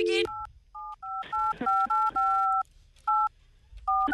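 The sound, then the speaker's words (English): A phone number is punched in on a phone keypad to call a barber again, a quick run of touch-tone beeps, some short and some held longer, with brief pauses between bursts, heard clear. “Okay, I'm going to try him again.”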